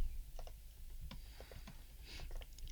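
Quick, irregular clicks of fingers typing on a laptop keyboard to look up whether Flushed Away is CGI or claymation, fairly quiet, with a steady low hum underneath and no one talking.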